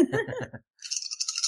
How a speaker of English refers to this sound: Oh, right. We got to roll dice to decide if we get to do stuff.